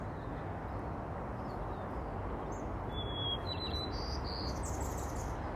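A bird chirps a quick series of short, high notes partway through, heard over a steady hiss of outdoor background noise. No voices.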